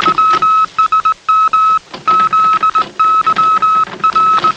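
Morse code telegraph beeps: a steady, high-pitched tone keyed on and off in quick short and long bursts, loud over a constant hiss of background static, with no one speaking.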